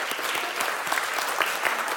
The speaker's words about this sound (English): I want to give those ladies another round of applause. Wasn't that beautiful?